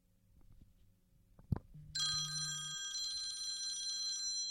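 After a soft tap, a phone alarm tone starts ringing: a bright, high-pitched, bell-like electronic trill that holds steadily for over two seconds, with a brief low buzz at its onset and no talking.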